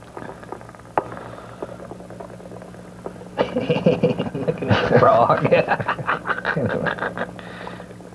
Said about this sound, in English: So much about these frogs.